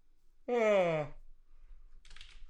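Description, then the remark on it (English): A single voiced yawn lasting about half a second, its pitch sliding downward, followed by quiet clicking like light typing on a keyboard. “Yawn break.”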